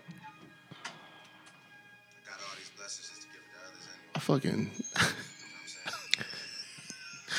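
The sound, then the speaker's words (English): A door swings shut with a couple of solid thumps and a latch click, preceded by soft ticking and shuffling, while people talk in the background. “Yeah, shut it. But don't shut the other door.”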